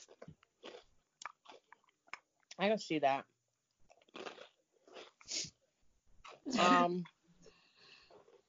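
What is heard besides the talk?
chewing food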